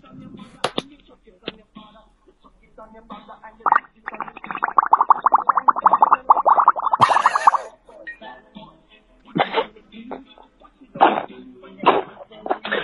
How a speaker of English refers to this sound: We got the bong rip.